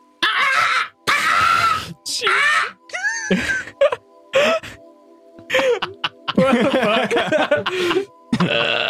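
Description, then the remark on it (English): A voice mimics a strained, wheezing bird call: a string of raspy, breathy cries and warbling moans, some pitched high and gliding, broken by short gaps, fairly loud throughout. “Why did that bird sound like it had fucking asthma or cancer or something?”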